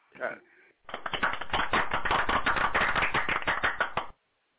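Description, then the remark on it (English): A brief vocal sound gives way to about three seconds of loud, dense applause, many hands clapping in a rapid, steady patter before it cuts off abruptly. “Wow, man, we had to give you the applause on that one, man.”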